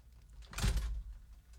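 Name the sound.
studio door being closed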